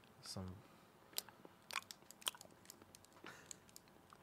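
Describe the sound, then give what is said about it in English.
Wet chewing of a Hi-Chew chewy fruit candy, with irregular smacking and clicking mouth sounds spread across a few seconds and a brief voiced murmur near the start. “High Chew's like chewy fruit snack or something.”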